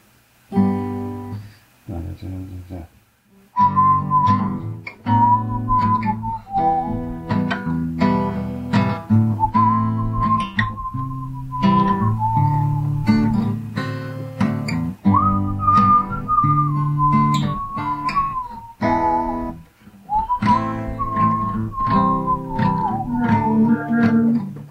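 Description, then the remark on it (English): A 1980s pop song melody is whistled over a played instrumental backing during a Name That Tune game, the bright, steady whistle tone carrying the tune in long phrases with brief pauses, fairly loud throughout. “I play it and I also whistle it or hum it.”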